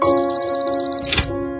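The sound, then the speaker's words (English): An alarm clock beeps in a rapid, steady series of about a dozen loud, high-pitched pulses over a sustained musical tone, ending with a brief swell of noise. “Set an alarm?”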